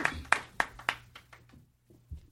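A brief, sparse round of applause: four sharp, evenly spaced claps ring out, followed by a few softer, scattered claps that quickly taper off into quiet.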